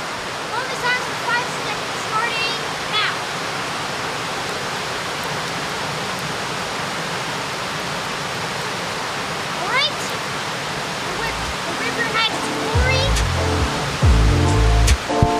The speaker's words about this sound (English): everyone hold up your mic to the river direction, and I'll turn up the gain so everyone can hear this.